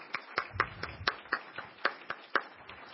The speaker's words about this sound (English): So if we could all give her a round of applause, I would appreciate it.